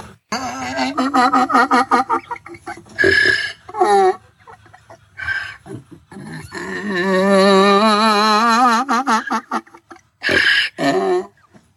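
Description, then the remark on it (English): A donkey, Monte the Singing Donkey, lets out a strange, warbling bray that wavers up and down in pitch like singing, broken into bursts with harsh breathy honks and gasps between the drawn-out tones. “That is not a normal donkey noise.”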